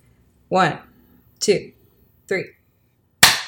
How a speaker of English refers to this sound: We can just do one clap. Okay. Both of them will hear it. All right, let's do it. Start recording. Okay, now I'm recording. Okay. All right. So we'll do 1, 2, 3, clap.